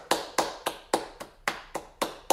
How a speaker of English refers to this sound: Ayo, if you're lactose intolerant and you drank milk anyways and you shit yourself, clap your hands!